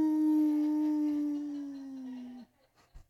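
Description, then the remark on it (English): A single long, sustained howl from a human voice mimicking a wolf, holding a steady pitch that slowly drifts down before cutting off, followed by a brief breathy sound. “They were just like, they would call my name like wolves howling in the middle of the night.”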